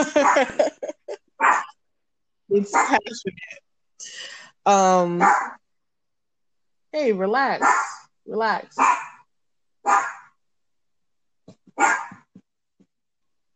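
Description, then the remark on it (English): A small dog barks in short, sharp bursts several times, with a person speaking calmly in the gaps between the yaps. “I shouldn't give him a treat when he barks I feel like now this, you're right?”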